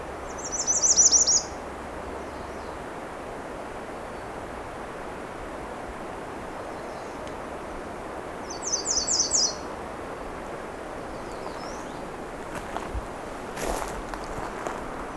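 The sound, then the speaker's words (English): A female bird sings two brief, rhythmic phrases of repeated high, bright notes that resemble a common yellowthroat's song, separated by several seconds of quiet hiss, with faint clicks near the end. “it's almost mimicry of the common yellow throat.”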